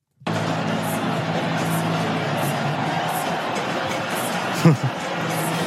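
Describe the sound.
The crowd at a band's last live show cheers in a steady, dense roar of voices that holds throughout, with one brief louder shout rising out of the noise near the end.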